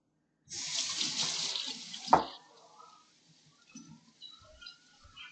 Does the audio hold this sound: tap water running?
yes